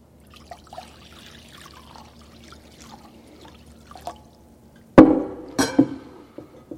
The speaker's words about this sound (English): So he got up from the meal. He took off his outer clothing and wrapped a towel around his waist. After that, he poured water into a basin.